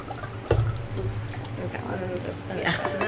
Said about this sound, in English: And half this podcast will be the sound of alcohol being poured.